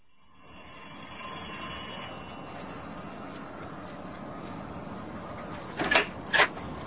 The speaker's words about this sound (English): His doorbell's a bit dodgy. Give it a good push.